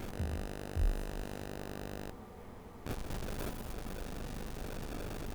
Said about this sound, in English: Yeah, I don't know what is going on right now, but it sounds like it's getting worse. I think I can hear it, too. Oh, really? That's not good. Yeah, I hear static in my headphones, too.